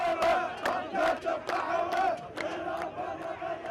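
A large crowd of protesters in Iraq, at the protests that began in October 2019, chants in unison. Many voices shout a rhythmic slogan with steady, repeated beats, loud and continuous throughout, with no single voice standing out.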